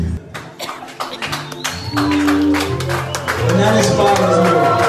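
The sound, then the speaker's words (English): A couple of people clap, a quick uneven run of sharp, bright handclaps with voices and tonal sounds going on underneath throughout. “It's two people clapping.”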